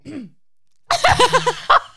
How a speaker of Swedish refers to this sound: Snygg synkronisering av harkling.